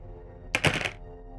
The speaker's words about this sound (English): That's a lot of dice rolls.